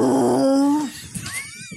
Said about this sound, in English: I was barely conscious when I heard a loud, deep, bass-like yell from the air.